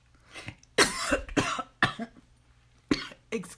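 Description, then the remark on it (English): A fit of harsh, raspy coughing from something caught in the throat, in a rapid irregular series of about five or six loud bursts, each sharp and breathy, with short gasping pauses between them and no talking. “I'm so sorry for that. Something just got caught in my throat.”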